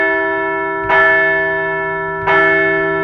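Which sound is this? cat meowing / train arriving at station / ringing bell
ringing bell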